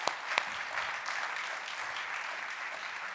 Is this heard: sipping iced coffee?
no